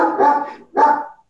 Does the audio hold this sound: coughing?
no